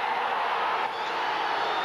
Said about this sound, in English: And the Dolphins, as if they received an early holiday present, cheer on the sidelines.